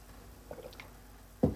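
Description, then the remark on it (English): Someone takes a quick swig of coffee: a soft slurp of liquid around mid-clip, followed by a brief louder gulp or clunk near the end, with quiet background otherwise and no talking. “Now let's talk about some of these patterns as I take a quick swig of coffee here.”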